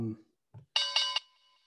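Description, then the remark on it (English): A bright, ringing bell sounds in a quick burst of pulses, then fades out with a lingering shimmer. A brief voice and a low thump come just before it. “Oh my God, knock on, ring the bell.”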